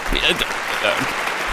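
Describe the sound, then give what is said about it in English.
A crowd applauds in a steady, dense wash of clapping, loud throughout, with a few voices calling out over it. “Why are we clapping?”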